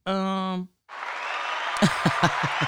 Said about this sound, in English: Here we go. Hand clap for the self care.